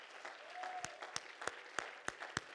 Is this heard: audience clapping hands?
yes